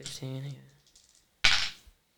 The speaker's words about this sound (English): You have to roll all the dice at the same time so you can pick up the ones you want to reroll.